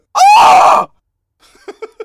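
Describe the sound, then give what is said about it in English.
A voice imitates a rooster's death-rattle call: one loud, strained, rising cry lasting under a second, followed by three or four faint, short, choppy bursts. “You know what the sound is that they make? Yeah. They go. They death rattle.”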